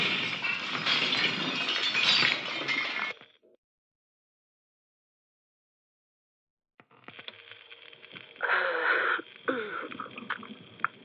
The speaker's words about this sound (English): the glass panel's just splintered in two. It's holding, though.